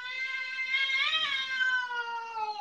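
A single long, drawn-out cat meow, fairly loud, its pitch swelling briefly in the middle before sagging toward the end. No one speaks over it.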